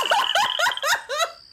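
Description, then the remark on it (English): A voice imitates a volume of frogs croaking, said to sound like Boss Nass from The Phantom Menace, with about five quick, throaty, rhythmic bursts, loud, one after another with no other talking. “And he makes that sound, and then frogs just come, just a horde of frogs.”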